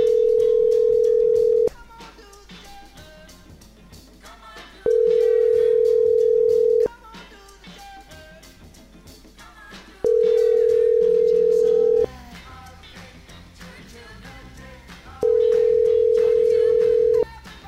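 A telephone ringback tone on a landline call to a Verizon customer service agent repeats four times in steady, evenly spaced bursts of about two seconds, loud, with faint background murmur between the rings.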